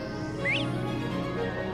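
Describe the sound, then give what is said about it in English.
A bobwhite quail's call in a wetland forest: one brief, upward-sweeping whistle rising clearly above a steady low hum and background noise. It is faint and comes early, followed by only the hum. “Oh, bobwhites in the background. Bobwhite quail.”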